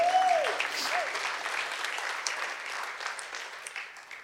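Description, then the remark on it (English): A church audience claps steadily together to the Lord, a dense, sustained wash of applause that holds for several seconds and tapers slightly at the end, with a brief tonal note at the very start. “Yeah, clap to the Lord.”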